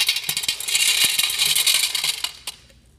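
Small stones pour from a cup into a jar already full of rocks in a continuous clattering stream, bright rattling clicks piling up for over two seconds, then a last few pebbles land and it trails off into quiet.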